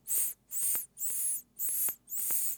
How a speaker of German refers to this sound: Ja, also bei so F-Lauten, momentan ist es nicht so krass, fange ich halt an zu pfeifen.